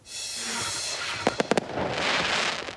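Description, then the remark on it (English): Fireworks go off in a quick cluster of four sharp, crackling bangs, set against a steady hissing wash of background noise that swells slightly afterward. “And ready for launch, how the cooler, wetter weather is saving fireworks, no matter what you're celebrating.”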